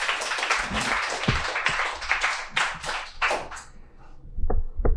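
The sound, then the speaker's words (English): An audience applauds to welcome a speaker, many hands clapping together in a dense, steady burst that fades after a few seconds, leaving a couple of scattered claps at the end. “So let's give a warm round of applause”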